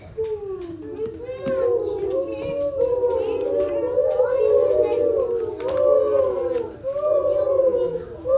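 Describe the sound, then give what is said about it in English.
Several children's voices imitate a quiet owl with long, wavering "hoooo" sounds while twisting with a knee bent to the chest, overlapping almost without pause for about eight seconds, their pitch gently rising and falling at a moderate, steady level. “Instead of being a loud owl, we're going to be a quiet owl.”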